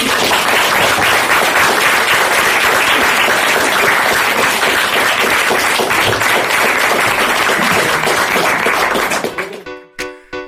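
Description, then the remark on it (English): Loud, dense audience applause for about nine seconds, a continuous wash of many hands clapping, then quickly thins to a few scattered claps and fades out. “Well, I guess it's time for a round of applause for both of you.”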